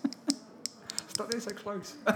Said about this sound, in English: This is me shaking the dice. Two.